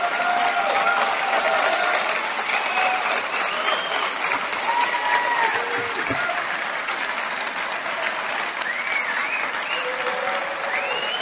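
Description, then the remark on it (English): Sustained applause from a large crowd, a dense, steady wash of clapping at even loudness throughout, with faint whoops and cheers rising above it. “I think the rest is just clapping.”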